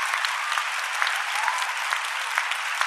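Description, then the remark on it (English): An audience claps steadily for a panel, a dense continuous patter of many hands with occasional sharper individual claps standing out, sustained at an even level throughout. “Let's give our panel a round of applause.”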